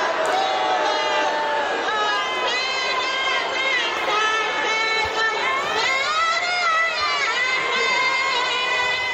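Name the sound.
crowd booing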